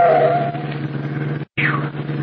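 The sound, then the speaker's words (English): A loud car engine roars steadily, cuts out for an instant, then returns with a high, sliding screech as the vehicle swerves sharply in a near miss. “don't drive when you're angry.”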